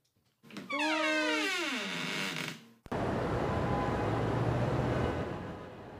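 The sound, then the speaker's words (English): A loud tonal whine slides downward in pitch for a couple of seconds, then cuts to a steady, dense roar of street traffic on the city streets of New York, at Cabin Plaza, with cars and trucks rumbling past. “Okay, as you can hear, we are on the city streets of New York. It is some sound, isn't it? You can hear the cars and the trucks and the stuff.”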